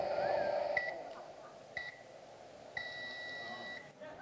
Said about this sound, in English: Darn, I did the bread too long again. That was a microwave.